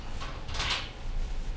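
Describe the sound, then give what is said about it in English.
A window being forced open gives a single harsh scraping, grinding slide that swells briefly and fades, set against low rumbling background noise, with no voices. “was like about to take the whole fucking window down.”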